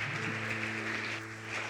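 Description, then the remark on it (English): A church audience applauds a woman's decision to accept Jesus as her Savior, just before her baptism: dense, steady clapping that holds at an even level throughout, over a low sustained keyboard chord humming underneath. No one speaks. “So let's get a strong applause.”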